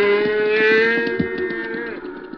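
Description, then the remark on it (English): A long, loud bovine moo fills the whole clip, a steady drawn-out bawl, with the lowing of a calf and its mother cow blending together and no talking. “Go on, little fella. Find your mother.”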